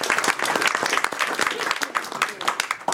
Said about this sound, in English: So a big clap. Applause.